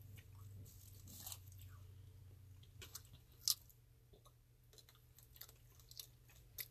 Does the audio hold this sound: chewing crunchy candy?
yes